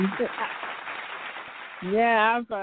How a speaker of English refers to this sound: Oh, yeah. Let me throw some claps on it for you.